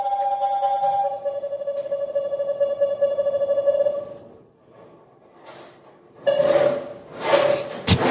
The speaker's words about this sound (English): So he starts sawing. And if he goes off course, it starts to go. That is the most annoying sound in the world.